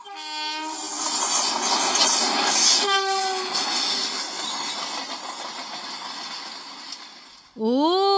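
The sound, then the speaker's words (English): A train, called the Good Morning Train, rumbles steadily along the tracks, loud, with a drawn-out horn blast at the start and another sharp horn sounding at the very end. “The name of the train is Good Morning Train.”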